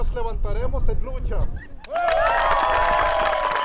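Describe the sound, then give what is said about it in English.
A voice speaks briefly, then a crowd at a tribal community meeting in Saps about their right to water erupts into loud applause with cheers and supportive shouts, sustained, filling the rest of the moment. “Applause and shouts of support soon turn to celebratory song and dance.”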